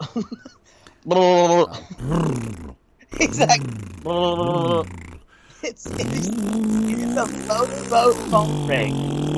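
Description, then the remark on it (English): A voice imitates a Philippine phone ring with loud, buzzing lip-trill bursts like a motorboat, several short pulses in a row, then a longer, wobbling buzz with no words. “and the phone ring in the Philippines sounds like you do when you're like motorboating titties or a butt.”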